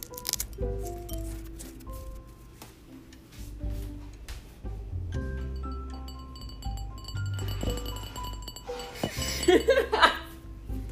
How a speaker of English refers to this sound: I was trying to do the ASMR of the glass tinkling